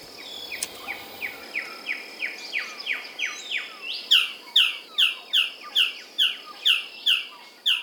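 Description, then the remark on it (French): A male blue bird-of-paradise, seeking a mate, calls in a steady series of short, sharp notes, roughly two per second, growing louder and harsher midway through and standing alone without voices. “Un paradisier bleu mâle en quête d'une compagne.”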